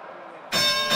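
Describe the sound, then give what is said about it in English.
After a moment of quiet background hiss, a loud, bright bell chime strikes suddenly and rings on with shimmering, sustained overtones until the end, marking that an NBA player has reached 30 points early tonight. “30-point bell. Somebody in the NBA already tonight, early.”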